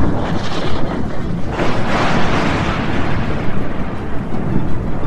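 A loud, sustained crackling rumble of thunder from a lightning strike fills the whole moment, swelling briefly in the middle before rolling on with heavy low-end noise and no voices.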